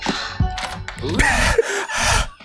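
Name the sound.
heavy panting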